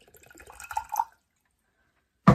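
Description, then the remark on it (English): Water is poured into a container for about a second, a gurgling, splashing trickle, then a pause of silence before an abrupt loud burst of noise at the very end. “So we're gonna pour the water into poor.”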